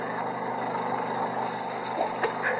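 A small two-cycle engine, probably a generator, drones steadily from below for the whole stretch: a buzzing, even running sound, moderately loud and constant without pauses or voices.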